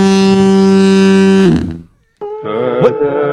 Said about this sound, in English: What was that? What the fuck? Foghorn. I don't even know, man.